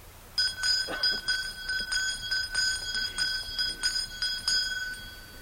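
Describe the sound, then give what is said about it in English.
A hand bell, lifted by a Nez Perce spiritual man before lined-up Nez Perce and Forest Service people, rings steadily with quick, repeated clapper strikes, its bright metallic tone sustaining and shimmering between hits for several seconds, with no voices. “When the Indians and the Forest Service people had lined up, he lifted a bell.”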